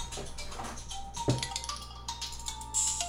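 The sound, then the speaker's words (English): A mobile phone rings with a steady electronic tone, moderately loud, over a noisy background, with a brief knock partway through. “That's my bubbler phone.”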